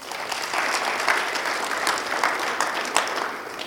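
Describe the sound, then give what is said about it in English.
An audience claps together in honour of two people, a dense, steady patter of many hands that holds at an even, moderately loud level for a few seconds with no voices over it. “Let's give them another clap.”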